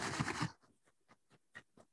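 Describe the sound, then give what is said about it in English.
Crunching of a dried snack with dried peas in it, from a plastic bag: a loud, dense burst of crackling crunch at first, then a steady run of short, dry chewing crunches, quieter and evenly spaced, with no talking. “It's just crunching, I'm going to be honest.”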